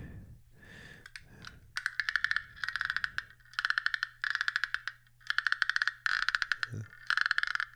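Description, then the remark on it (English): A wooden frog instrument is scraped again and again, producing a run of raspy ratcheting croaks in quick, evenly spaced bursts, with no one talking. “I don't know what that thing is called, but it's definitely like a frog mimicking.”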